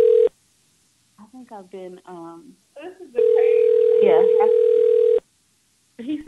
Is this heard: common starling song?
no